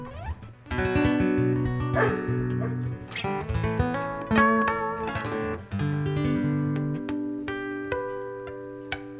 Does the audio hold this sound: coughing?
no